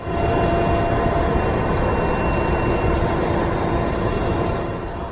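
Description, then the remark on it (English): Inside a helicopter cabin in flight over the remnants of a camp for displaced persons in North Darfur: a loud, steady engine and rotor roar, heavy in the low end with a constant mechanical whine and no voices. “Looking down from up here inside the helicopter, I can see the remnants of the Korma camp for the displaced persons.”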